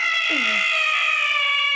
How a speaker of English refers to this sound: I feel like, is there a raptor? Wait, is that a cat in heat? Maybe. There's a bunch of cats that live outside that are like feral cats.